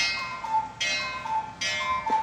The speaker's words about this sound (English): Is that a cuckoo clock? That was the cuckoo clock. I am married to a German from the Black Forest, which is where they were invented, and we have to have a cuckoo clock in the house at all times. My mother is Dutch, and I grew up with that sound.